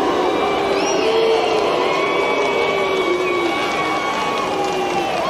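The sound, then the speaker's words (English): A large stadium crowd at Melbourne Park booing during a presentation ceremony, a dense, loud, steady roar of many sustained voices with a few higher whistles and shouts threaded through, continuing without a break. “So, Melbourne Park crowd booing, pass or farce?”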